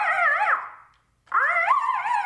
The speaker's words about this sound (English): These are military phones right here. Sorry. This is called the Howler.